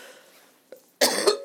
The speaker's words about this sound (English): I'm so sorry to cough in your ear.